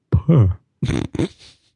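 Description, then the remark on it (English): A voice imitates burping a Tupperware bowl lid: a low, buzzy vocal sound followed by two short, raspy puffing bursts, fairly loud, then a faint trailing hiss. “You got to burp the bowl.”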